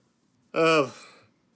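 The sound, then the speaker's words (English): A single voiced yawn rises abruptly, then trails off over under a second, its drawn-out breathy tone sliding gradually lower before fading back to quiet background. “I guess it's just like, sorry, I yawned there.”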